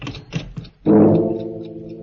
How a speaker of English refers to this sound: As the clock finishes striking 12.